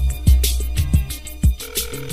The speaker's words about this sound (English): Oh man, we're wasting the show on rings.